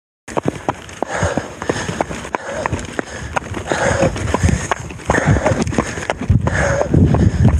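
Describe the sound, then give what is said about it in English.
Hard shoes clatter in an uneven, limping rhythm of sharp clacks, like a lame horse clip-clopping, with heavy breathing and faint rustle running underneath throughout. “I realized that I sounded like a horse with those shoes.”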